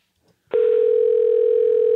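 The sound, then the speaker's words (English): A loud, steady electronic telephone ringing tone starts abruptly after a half-second of near silence and holds unbroken to the end, with no one talking. “It's ringing.”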